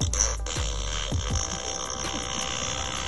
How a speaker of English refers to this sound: This is from Really Rad Robots. We have the Fart Bro. It's RC-controlled as well. Go ahead, hit the button.